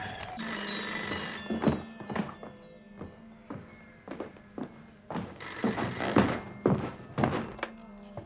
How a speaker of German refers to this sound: Das Telefon klingelt, Liebling. Gehst du?